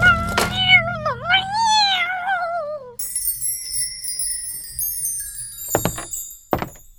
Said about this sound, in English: The cat! A terrible wound to her eye! What? Her eye, it's been torn out, poor thing!